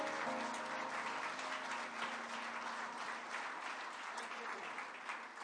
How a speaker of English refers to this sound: Would you give a hand clap to him for being here today? Thank you. Thank you.